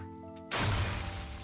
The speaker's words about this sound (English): It's called a dirt explosion. We're just going to listen to his explosion sound effects now.